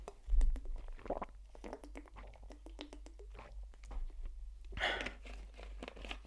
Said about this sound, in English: Let me get my Fiji water, giving your ears fucking ASMR to sleep.